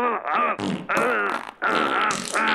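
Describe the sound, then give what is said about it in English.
A loud string of buzzy, sputtering fart sounds in several back-to-back bursts with only brief breaks between them, each one a drawn-out, wavering blast. “Have a machine gun fart.”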